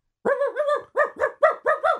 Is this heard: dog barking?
yes